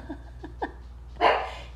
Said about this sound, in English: that my sweet dog, and she got up and barked just as I said that, as if on cue.